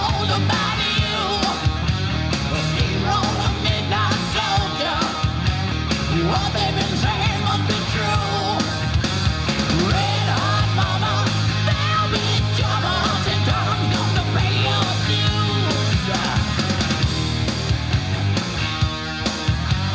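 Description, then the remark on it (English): A loud, dense hard rock cover plays throughout, a distorted guitar hook riding over driving bass and drums, with raspy, shouted vocals pushing through the steady wall of sound. “It's a good cover. Great guitar hook, too.”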